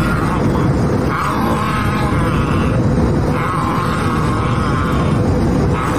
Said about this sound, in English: The guy on today's Spirit Airline flight is more like a rabid dog. That's him growling and eating his mask.